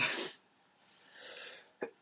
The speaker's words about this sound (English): The line that we always say to each other every now and then, and my dad will go, oh, God. I have a sneeze coming up.